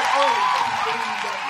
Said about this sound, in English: give him a round of applause real quick before I leave, before I get into my shit.